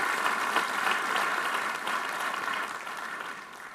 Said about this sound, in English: By the way, thank God for mothers who bring their kids to church. Somebody give a clap for that person right there. Come on.